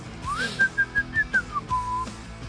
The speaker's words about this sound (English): And again, I think, oh my gosh, here he goes with the whistling.